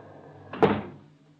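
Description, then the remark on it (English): The front door of a log cabin trading post in the Alaskan village of Rutland swings open with a single sharp wooden clunk, followed by a brief rattling decay that fades within half a second. “Suddenly, the front door swings open.”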